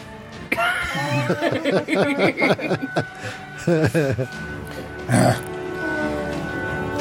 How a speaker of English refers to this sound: burping up peppers over here.